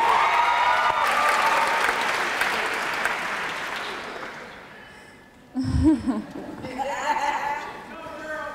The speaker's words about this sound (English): Thank you. Applaud the poet.